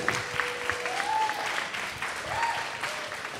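A crowd claps steadily and densely throughout, a continuous wash of applause, with a couple of short rising whistles cutting through over the clapping. A live show audience is applauding an author and DJ after her segment about her book.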